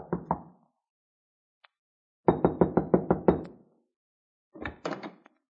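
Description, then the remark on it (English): Knuckles rap on the locked wooden door of the little shack Leonard had rented, in several bursts: a couple of knocks, a pause, a quick run of about seven firm knocks, then a shorter volley. Clear, with no voices. “I tried the door, but it was locked, so there was nothing for me to do except knock.”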